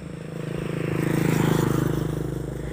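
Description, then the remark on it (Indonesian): A motorcycle engine drones on a village road in the early morning, before 6 a.m., among green rice fields facing Mount Galunggung, its low rhythmic putter swelling louder through the middle and easing off slightly, with a faint rustle of outdoor background noise. “Jadi ini ada di perkampungan, di jalan perkampungan gitu. Banyak motor nih, ada suaranya.”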